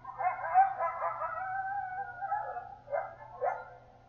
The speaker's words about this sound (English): Yelping can be a celebration or a criticism among a small group, often heard during play among pups.